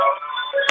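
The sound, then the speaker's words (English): A telephone rings with a steady, buzzy electronic tone, heard briefly and muffled as though over a phone line, with a sharp click near the end. “Sorry, another phone in the background.”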